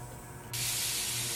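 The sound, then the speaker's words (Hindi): A pressure cooker abruptly lets out a loud, steady rush of hissing steam that starts partway through and continues unbroken, with a low hum underneath. “ओह cooker. ए madam cooker छोड़ो,”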